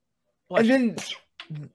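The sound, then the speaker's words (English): A single loud sneeze with a drawn-in voiced build-up and a sharp burst, followed by a brief short vocal sound afterward. “Bless you.”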